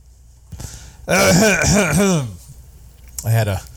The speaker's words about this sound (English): I just coughed up a small pink eraser-like thing on the ground.